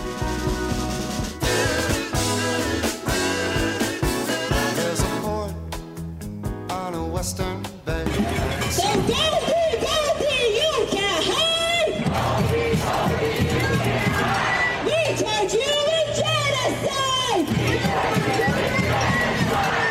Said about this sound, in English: That is protesters in Philadelphia in front of a Jewish-owned restaurant screaming, Goldie, Goldie, you can't hide. We charge you with genocide.